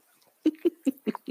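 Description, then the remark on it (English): A puppy gives a quick run of five short, squeaky yips in a steady rhythm, fairly soft, with no talking. “The guest appearance with just noises would be. Okay, here we go. Oh, beauty. This is Nino.”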